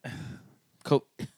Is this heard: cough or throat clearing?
yes